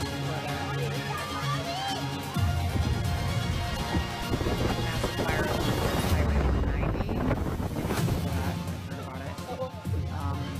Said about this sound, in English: I'm not exactly sure, but this is heavy rain in Mexico. I guess it's a compilation of crazy.